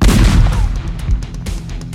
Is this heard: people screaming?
no